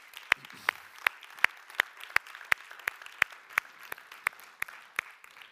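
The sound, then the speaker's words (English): A standing audience at the close of a sermon claps hands to Jesus Christ in a steady, even rhythm, about fifteen sharp, loud claps in unison over a soft wash of scattered applause, with no voices. “Let's clap our hands to Jesus Christ.”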